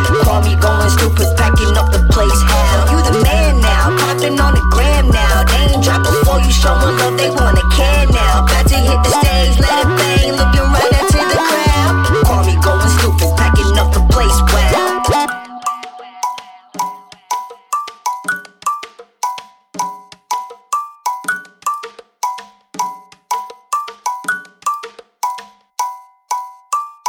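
A hip-hop track plays loudly with a dense, bass-heavy beat, then drops out halfway to a sparse loop of bright, cowbell-like tonal hits repeating in a steady rhythm.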